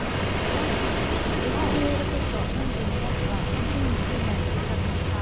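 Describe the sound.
A rocket launch on solid fuel engines: a loud, unbroken, rumbling roar that holds steady for about five seconds, with faint voices murmuring underneath.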